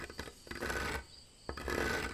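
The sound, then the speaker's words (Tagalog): In a quiet house, fingernails scratch across a wooden piece of furniture in two sustained, rasping strokes, each preceded by a few short scrapes. The harsh, gritty scraping is clear and steady, with no voices present. “nakarinig ako ng pagkaskas ng mga kuko sa isang dekahoy na kagamitan.”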